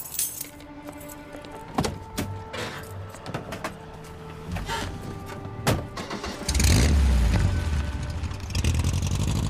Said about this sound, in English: Keys.